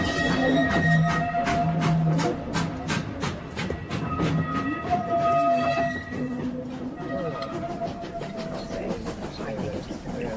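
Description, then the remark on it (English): A train starts moving with a steady run of loud, rhythmic wheel clacks over the rails, the clatter blending into a continuous rumble as it gets underway. “Looks like we're off.”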